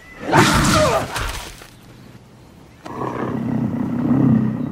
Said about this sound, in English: a mountain lion springs from its hiding spot and attacks. The scene is from a 2005 episode of HBO's 6 Feet Under.